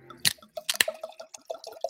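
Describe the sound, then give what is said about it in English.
Red Malbec wine glugs out of a bottle into a glass, a quick run of rhythmic gurgling pulses, opening with a couple of sharp splashy clinks; no one speaks. “You know, so I'm gonna pour this into the glass.”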